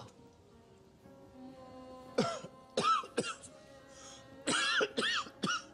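A person coughs repeatedly, harsh bursts arriving in two clusters of about three or four, mixed with rough throat clearing, over a low background hum.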